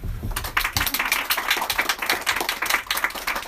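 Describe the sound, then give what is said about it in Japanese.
A small group applauds, with quick, overlapping hand claps forming a steady, crisp patter that holds at an even level for a few seconds. There is no talking. “ちょっと拍手しようかな。”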